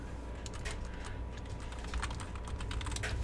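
Rapid, irregular clicking of keys on a computer keyboard, close and steady for a few seconds, with no voices, over a low background hum.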